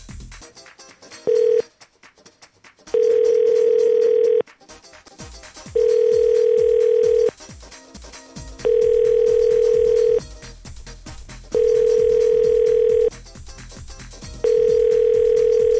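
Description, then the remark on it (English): A telephone ringback tone repeats steadily while calling a McDonald's restaurant, about six long buzzing tones at even intervals, each separated by a short pause, heard clearly over a faint background. “It's McDonald's, they take a while to get to the phone.”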